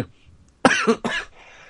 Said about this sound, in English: Sorry, I didn't mean to cough on the camera. And on the microphone, I was thinking the camera because the girl's always filming.